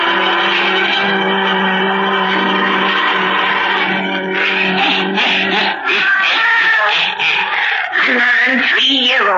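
A black cat named Satan meows in long, wavering, drawn-out cries, loud, over eerie sustained tones. Near the end comes a rising and falling yowl.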